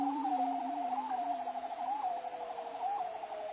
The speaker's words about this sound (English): Wild noise. Wow. A bearded seal. Of course it's a seal. Why would it not be a seal?